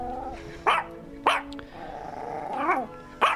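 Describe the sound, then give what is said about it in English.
A dog named Maggie lets out four sharp barks at uneven intervals, with a low rumbling growl running between them, and no one talking. “Okay, that seems to be abating the barking.”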